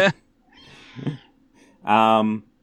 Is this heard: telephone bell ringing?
no